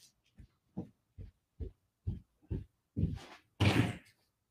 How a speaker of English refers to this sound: One second, someone's knocking at the door. I'm sorry, I'm in a hotel.